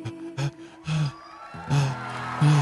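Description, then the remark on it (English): An 86-year-old male singer struggles to breathe: short, strained gasping breaths come in quick succession, about five ragged, partly voiced pulls of air with brief pauses between, fairly loud, with no talking. “It's real shallow. He can't breathe. He can't get a breath.”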